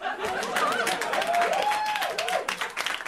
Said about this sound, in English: I don't know why that merits applause.